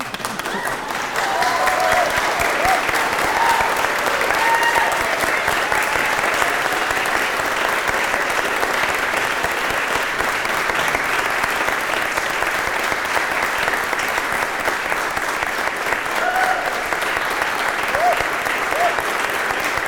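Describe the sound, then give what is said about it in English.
A large church audience applauds a new minister who has just received a Bible at a service on a Christmas weekend night, a sustained, dense burst of clapping for about twenty seconds, steady and loud with faint voices and cheers scattered underneath. “You should applaud.”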